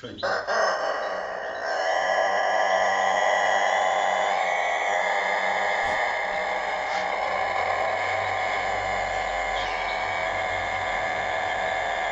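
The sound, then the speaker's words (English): A Kosovo long-crowing rooster lets out one extremely long, sustained crow of about 45 seconds that holds a steady, loud pitch for the whole stretch without breaking, prominent, with a faint low rumble underneath. “Let's listen to one of these Kosovo roosters with a really pretty phenomenal 45-second crow.”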